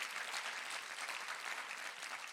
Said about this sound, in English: Come on, Westside, clap with us. Come on, he's got all the power.